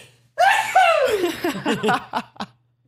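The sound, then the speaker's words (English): A loud, showy sneeze: a drawn-out, high voiced cry sliding downward, then a quick string of four or five short breathy bursts that sound almost like laughter before it stops. “That was like a cowboy sneeze.”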